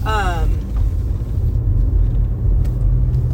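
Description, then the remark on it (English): A car rumbles past, its loud, deep engine and road noise filling the whole stretch, with a brief voiced sound at the very start. “That car, like, made me lose my train of thought.”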